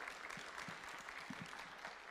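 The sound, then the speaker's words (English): A crowd applauds steadily for helpers called up by the speaker, many hands clapping in a dense, continuous patter at an even, moderate loudness throughout, with no voices standing out. “Would you guys give them a round of applause here?”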